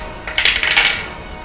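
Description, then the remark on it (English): A quick run of small, hard clicks and clatters as two dice tumble across a tabletop, rattling for about half a second before settling. Fairly light, with no voices. “You got my two special dice.”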